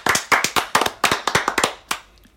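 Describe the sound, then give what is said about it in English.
A brief round of applause in a studio: a small group claps in quick, uneven bursts for about two seconds, the sharp claps loud at first before trailing off. “Round of applause in the studio.”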